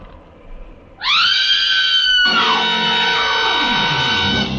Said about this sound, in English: Now, look, get over there inside the barn and scream. Long and loud, huh? Scream? Yeah. It's our only chance.